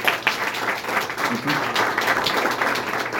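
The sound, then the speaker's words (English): A crowd applauds a jazz artist steadily, many hands clapping in a dense, continuous patter at an even, moderately loud level throughout. “Now at this time, I'd like for everyone to put their hands together and give another round of applause”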